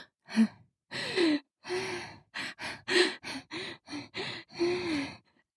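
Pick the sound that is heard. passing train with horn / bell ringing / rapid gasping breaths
rapid gasping breaths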